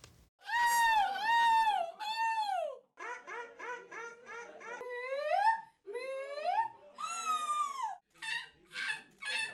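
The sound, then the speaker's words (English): A person at a seagull-imitating competition in a town in Belgium imitates seagull screeches. It is a series of loud, high, wavering cries, some drawn out and arching, others in quick repeated bursts, delivered alone. “About 50 entrants were judged on their skills at imitating the gull's screeches and movements.”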